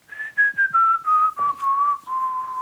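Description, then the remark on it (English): A man whistles a slow, steady melody, a series of clear sustained notes that drift gradually downward in pitch, with short breaths between phrases and no talking. “My dad keeps whistling.”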